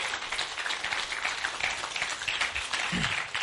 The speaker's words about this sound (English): I do that because if he just walks up here and it's quiet, it's just awkward. So thanks for clapping for him, all right?